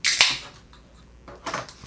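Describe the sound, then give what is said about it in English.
A Yuengling beer is opened with a sharp metallic click and a quick hiss of escaping gas, then a lull of faint rustling before a second short fizzing burst. No one speaks. “All right, let's pop the Yingling.”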